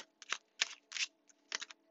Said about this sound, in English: I am shuffling the modern witch's tarot. I cannot guarantee you'll hear me shuffling the whole duration of this reading, but based off of faith, we will go from here.